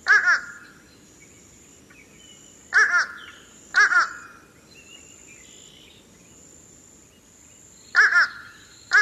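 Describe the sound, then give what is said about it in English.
A fish crow, about two-thirds the size of an American crow, gives short, nasal two-note calls, "uh-uh," repeated several times at irregular intervals. The calls are clear over a steady background hum of insects. “It sounds like it's saying, uh-uh, uh-uh. So here's fish crow.”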